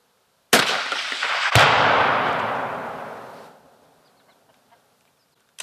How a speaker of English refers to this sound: First shot. So here is the explosion location. There's literally just pieces, little bitty pieces here and there.